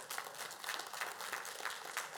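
crowd, audience hand clapping

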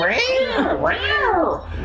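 animal, cat meowing

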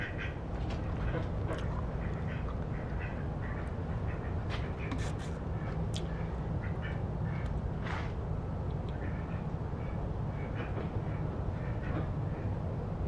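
animal, duck quacking

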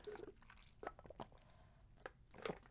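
food or drink, sipping water

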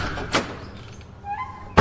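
household object, door opening and thudding

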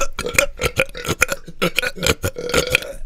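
human body sound, burp

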